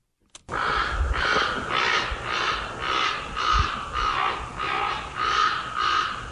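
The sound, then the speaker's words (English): Ravens caw over and over at night in a steady, rhythmic series of harsh calls, roughly ten in a row, loud, with no one talking. “here's a YouTube video of ravens cawing at night”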